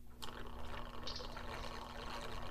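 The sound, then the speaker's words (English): Whiskey pours steadily into a glass for a couple of seconds, about 2 ounces, a continuous splashing trickle with a faint low hum underneath and no one speaking. “Hang on one second. I have some whiskey to pour.”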